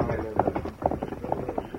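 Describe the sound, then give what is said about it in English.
Horse hooves clip-clop at a quick, uneven trot as the horses Silver and Scout are ridden away, sharp knocking steps over a busy background with voices mixed in. “Come on, get him up, scout.”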